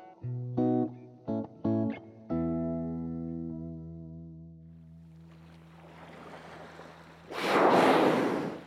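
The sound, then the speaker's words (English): A few sustained musical chords give way to rising ocean surf that swells and ends in a loud wave crash; no one speaks. “So, down to the sea.”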